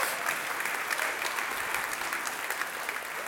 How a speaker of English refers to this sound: So I'm going to give her a shout out, so you can clap for her, and I'll tell her you did that.